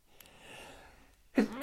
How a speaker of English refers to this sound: bless you. You actually waited for me to sneeze.